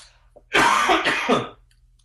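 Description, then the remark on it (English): A loud burst of throat clearing and raspy coughing from a person with a bad cold, lasting about a second, with two rough pulses in quick succession, then quiet. “Do you mind if I do a little coughing?”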